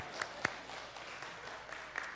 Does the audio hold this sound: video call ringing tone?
no